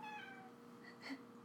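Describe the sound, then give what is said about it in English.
A person imitates a cat, producing a short meowing sound with a rising and falling pitch, heard alone without any ordinary speech. “I prefer if you wouldn't speak in your cat voice.”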